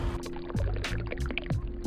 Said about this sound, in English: This is a 12 ounce cup, and it's really windy, so I'm gonna pour some tea in here. I'll pour it into, let's just say, the 12 ounce cup first. Delicious hibiscus tea.